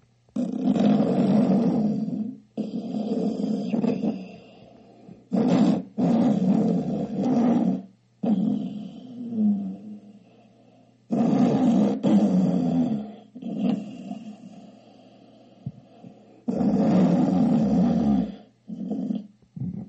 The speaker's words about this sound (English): Snoring is absolutely horrible. It sounds like someone dying or something. It does sound like somebody's dying.